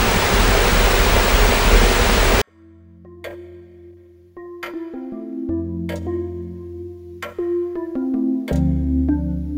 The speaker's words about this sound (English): White noise is still quite uneven. It sounds almost like ocean waves breaking.